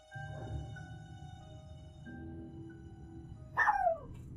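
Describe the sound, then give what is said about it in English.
A single short bark from a puppy at night, barking at something unseen, sharp with a falling yelp-like tail, rings out near the end over a steady low electrical hum. “What the dog doing?”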